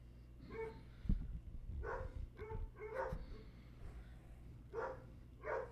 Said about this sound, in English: These dogs are crazy. We're gonna have to bring them in.